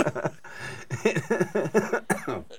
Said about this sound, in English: We're all coughing.